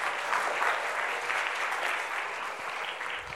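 A crowd claps for the Lord steadily, a dense, continuous patter of many hands at an even loudness throughout, with no voices standing out over it.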